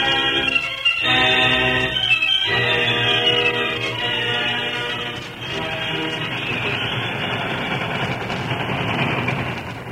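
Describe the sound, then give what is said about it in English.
A speeding steam train bound for Flat Rock roars along the rails through rolling hills west of town, scarcely slowing for a dangerous curve: a loud, continuous rumble and clatter that stays steady for the whole stretch, with no voices. “The train for Flat Rock was speeding through the rolling hill that lay to the west of town.”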